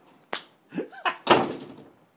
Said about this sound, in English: She has slammed the door.